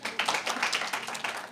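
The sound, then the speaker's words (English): An audience claps in a quick, steady burst of many overlapping hand claps, fairly loud and bright, with no voices over it, lasting under two seconds. “Guys, clap for me.”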